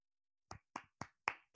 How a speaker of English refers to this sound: I'm going to clap for you on that.